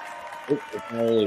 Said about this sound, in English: Crowd goes wild.